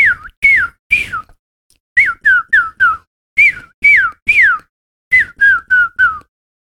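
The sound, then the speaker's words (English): A person whistles imitations of chickadee and cardinal calls: clear downslurred notes in quick groups of three or four, separated by short pauses, with no talking. “I should say the first bird was supposed to be a chickadee. Okay. The second bird was supposed to be a cardinal.”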